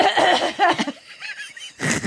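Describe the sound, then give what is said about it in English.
Harsh coughing and throat-clearing mixed with breathy, wheezy laughter, ending in a rough burst as someone hacks to clear phlegm. “Okay, get the phlegm out.”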